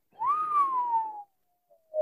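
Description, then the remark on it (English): A person whistles one breathy note that rises slightly and then slides slowly downward for about a second, followed by a pause and the start of another short whistle. “I don't really know how to whistle. I did my best.”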